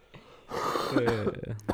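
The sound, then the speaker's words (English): A few rough coughs and throat-clearing bursts, loud and breathy, mixed with a voice talking over them. “You're coughing a lot tonight already.”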